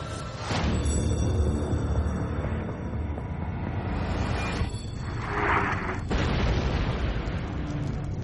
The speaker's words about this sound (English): Two hours after the eruption, people around the world start literally hearing the massive volcanic explosion as its sound waves circle the globe at 767 miles per hour. In Mexico City, 1,800 miles from the site of the blast.